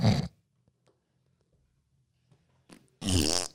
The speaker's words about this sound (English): Did you know that's the fart one?